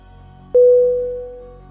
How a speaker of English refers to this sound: Gong sound. Temple gong. As the martial arts master began the demonstration, the sound of the gong filled the dojo.